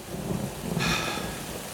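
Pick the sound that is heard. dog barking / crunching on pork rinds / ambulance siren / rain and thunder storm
rain and thunder storm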